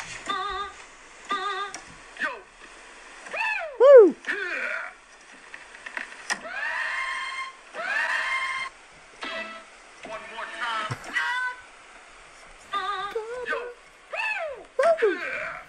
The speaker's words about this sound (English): Do you remember in music the keyboards that make the DJ noises? DJ, oh, all these. I found the video of it and we're going to have a lovely throwback.